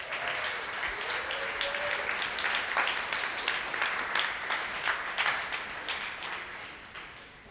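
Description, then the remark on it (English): Sustained audience applause for the kindergarten through fifth grade kids, a dense wash of many hands clapping at a steady, moderately loud level, with faint crowd murmur beneath it throughout. “Let's give our K through fives a round of applause.”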